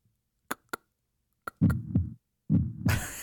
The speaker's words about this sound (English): I don't have a cricket, but I guess it was so silent I could hear my own heartbeat.